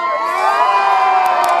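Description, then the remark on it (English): A crowd in the United States cheering and shouting in an impromptu celebration of Joe Biden becoming president-elect, a loud, continuous roar of many overlapping high-pitched voices and whoops, with a couple of brief sharp bursts near the end. “And cheering. Crowds gathering from the West Coast through New England, impromptu celebrations, some that include champagne toasts.”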